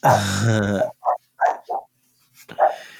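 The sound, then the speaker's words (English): A male dog lets out a long, throaty growl followed by several short grunting huffs and a final rumbling growl, fairly loud with brief pauses between sounds. “I just got to make sure my dog's alive.”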